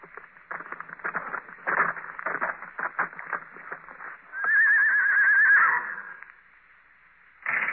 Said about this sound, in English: At 8, they heard a horse stop outside.